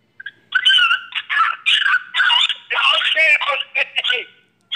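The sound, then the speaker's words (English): A dog with its head stuck in a hole whines and yelps frantically, high-pitched cries coming in quick, nearly continuous bursts for several seconds before breaking off. “The dog got his head stuck in a hole. He's all panicking.”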